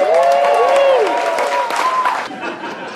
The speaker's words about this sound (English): Please put your hands together. A warm round of applause for Harland Williams.